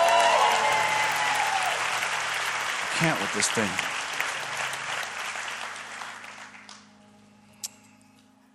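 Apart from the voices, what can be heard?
audience applause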